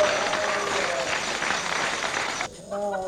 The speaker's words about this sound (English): Give him a jolly good clap.